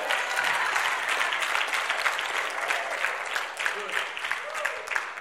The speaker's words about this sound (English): Come on, somebody give the Lord a good clap offering.